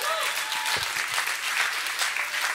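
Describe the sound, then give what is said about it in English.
Sustained applause from a large crowd at a morning church service, clapping for the Lord, dense and steady throughout, with a brief shout or two rising above the clapping near the start. “Why don't we give the Lord a big old clap in here?”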